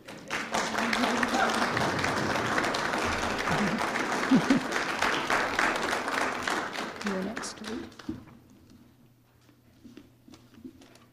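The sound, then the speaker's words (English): Steady, dense applause from an audience in a church at a service for International Women's Day fills the first eight seconds with a broad crackle of many clapping hands, then fades to quiet murmurs and stray sounds. “You're allowed to applaud.”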